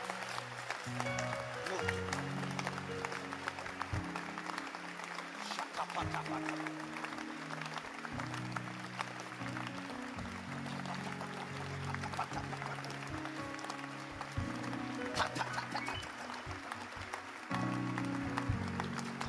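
A crowd claps steadily and rhythmically in response to a call to clap their hands, a dense crackle of many hands, over sustained low music or singing that continues throughout.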